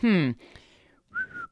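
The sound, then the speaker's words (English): A whistled catcall in two parts: a loud, bright note that swoops downward, a brief pause, then a softer, steady whistled tone that cuts off abruptly. “No, that sounds like it's a whistle.”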